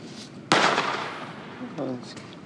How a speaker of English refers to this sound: Niggas still use Roman candles? Yeah, bro. Niggas still fucking with fireworks. Fireworks is one thing, but, like, Roman candles, though?